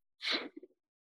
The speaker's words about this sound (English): So we're going to take a deep sniff and then another double sniff.